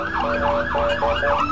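A wailing emergency siren of Bibi's convoy in Jerusalem rises and falls in steady, rapid sweeps, loud, over a low rumble of road traffic, with no voices.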